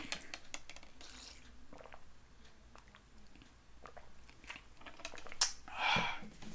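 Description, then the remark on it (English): Someone takes a sip of water: soft mouth clicks and quiet rustling, then a louder slurp and swallow near the end, with no talking. “Take a sip of water here.”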